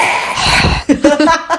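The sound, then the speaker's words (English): A person performs an exaggerated, creepy heavy breath, a long loud airy exhale, followed by a few short voiced bursts that sound like laughter. “That was lots creepy. Lots of breathing.”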